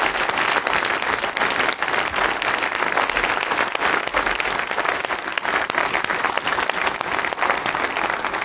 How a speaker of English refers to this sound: So would you join me in just applauding God for His work through our church family?